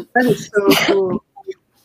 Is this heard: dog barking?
no